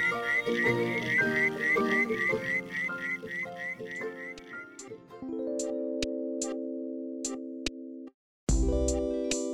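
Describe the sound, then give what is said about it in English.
A frog gives a rapid run of bright, whistle-like chirps, then shifts into longer steady whistled tones punctuated by sharp clicks, with a brief silence near the end before the call resumes. “Therefore, I appreciate knowing that there is a frog that can pick up my slack.”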